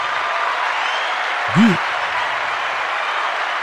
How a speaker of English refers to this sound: I want all the applause and all the praise.